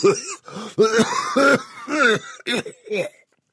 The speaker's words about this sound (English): coughed into a handkerchief, belly-ripping Doc Holliday kind of coughing